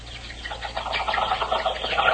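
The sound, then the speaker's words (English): Monkeys watching a water hole chatter in a busy, continuous jumble of high squeaks and calls, steadily loud, building slightly toward the end with no voices present. “Monkeys watching pool too happy.”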